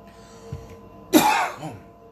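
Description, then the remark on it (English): A man coughs and clears his throat while making a video: a soft grunt, then a loud, raspy hack with a short rough follow-up, and no speech. “You knew I'd get the coughs as soon as I started making a video.”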